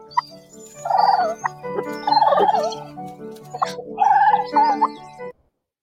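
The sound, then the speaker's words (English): A wild turkey gobbles in three loud, rapid, warbling bursts, each a rattling cascade of throaty notes, with short pauses between and no other sounds. “At the time, I had no idea the extent to which I would actually have to become a wild turkey.”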